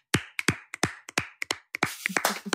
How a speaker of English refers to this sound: We'll clap that out.